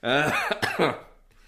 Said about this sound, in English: Cough a little bit.